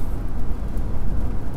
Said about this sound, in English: Pretty sure you hear cars in the background.